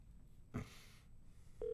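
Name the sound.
telephone dialing tones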